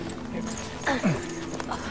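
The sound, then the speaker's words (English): A horse gives a short, falling whinny-like call lasting well under half a second, standing out over a steady low background rumble with no talking. “My horse! Where's my horse?”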